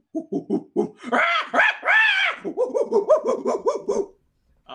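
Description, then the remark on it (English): Four large apes hooting and hollering while appearing to play some kind of dice game: a rhythmic run of low, breathy hoots builds into loud, high wavering screams, then breaks into a quick series of panting hoots before stopping. “As you start to get a little closer, you can hear hooting and hollering. It all sounds akin to this.”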